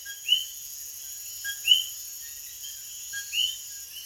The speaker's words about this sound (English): Living on Earth's Bobby Bascom recorded these coquis in the mountains of Puerto Rico on a June evening in 2018.